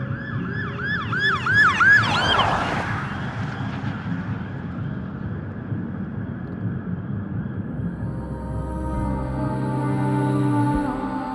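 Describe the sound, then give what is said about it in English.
Wailing emergency sirens rise and fall over steady city traffic rumble, most prominent early on before fading into the background hum of vehicles, sounding somewhat distant among buildings. “A philharmonic clamor of cars honking, the signature sibilance of transit buses coming and going from one stop to the next, and a wail of distant sirens slithering among the spaces between the buildings.”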